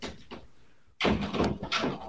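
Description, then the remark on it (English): After a second of near silence, a door is pushed shut with a sudden loud thud, followed by about a second of rattling, rumbling noise. “Shut the doors, please.”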